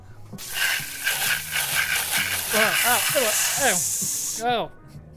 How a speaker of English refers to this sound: Spray him with the hose? Yeah, spray him with the trace. Do you mind spraying him with the hose? I got it.